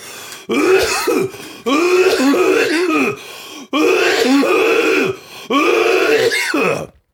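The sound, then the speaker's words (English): Several loud throat-clearing bursts and rasping coughs come in three or four long, effortful rounds with short pauses between, sounding exaggerated and deliberate, a performative display of coughing. “Yeah, dude, that's performative coughing, brother.”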